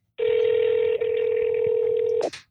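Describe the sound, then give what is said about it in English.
A steady, mid-pitched telephone tone drones for about two seconds while a phone call is placed, with a brief hiccup partway through, then ends in a sharp click. No one speaks. “We call her? Yeah, I call her.”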